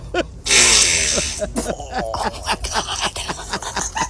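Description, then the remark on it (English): A woman's loud fart in a library lasts about a second as one raspy, noisy blast, followed by people talking and giggling. “She's shocked by her own fart. That was louder than she expected.”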